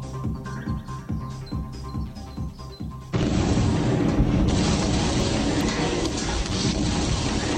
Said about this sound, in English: Warning, warning, warning. Extreme danger. Clear the area. As cesium sinks in the water, the rapid generation of hydrogen gas should produce quite an explosion.